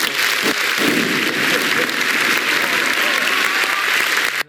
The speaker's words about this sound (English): Oh, yeah, can we get a bomb for that? Can we get a bomb? Oh, yeah, some applause or something?